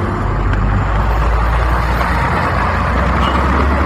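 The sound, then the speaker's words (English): Steady, loud street traffic heard while crossing a street, with a constant low engine rumble from cars, trucks and buses, and a broad hiss of passing vehicles throughout, no voices. “All right, so we're crossing the streets, and then we are going to make a right.”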